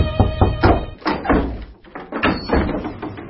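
Firm knocking on a door: two bursts of several dull, hollow thuds, separated by a short pause, loud and steady with no voices.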